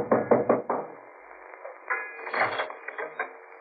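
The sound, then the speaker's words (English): A quick series of about four firm knocks on a wooden door at Peterson's boat-hire place on an ocean boat landing, followed by a pause and then some quieter shuffling and clunking sounds with no one speaking. “The sign read Peterson's boats for hire, day or week. I knocked for Peterson.”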